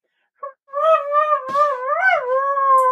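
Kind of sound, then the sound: animal, dog howling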